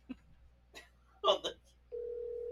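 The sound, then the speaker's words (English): A few brief taps and muffled bursts give way to a steady electronic ringback tone on a speakerphone, starting partway through and holding evenly to the end as an outgoing call placed at 1:30 in the morning rings. “There ain't no way he answers the phone.”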